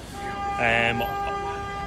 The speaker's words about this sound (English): Okay, a lot of beeping going on. That wasn't for us though.